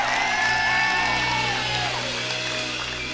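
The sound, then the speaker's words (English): A church crowd cheers and claps for Jesus in a dense, sustained roar, with whoops and shouted voices rising over the steady wash of applause for a few seconds. “All right, clap for Jesus.”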